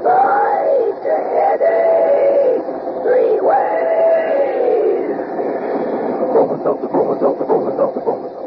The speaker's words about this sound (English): While we're waiting for Ellery to tell us something about next week's mystery, come on there, swing aboard our famous talking train.